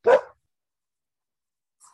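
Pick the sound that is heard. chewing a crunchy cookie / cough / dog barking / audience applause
dog barking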